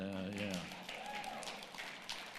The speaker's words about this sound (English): Get it? Good. A little bigger hand clap.